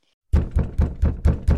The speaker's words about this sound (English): Until one day, he had a knock on his door.